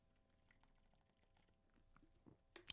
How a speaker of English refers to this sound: I had to take a sip for that one.